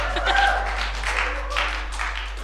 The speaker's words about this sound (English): Let's give him a clap. Make you feel welcome.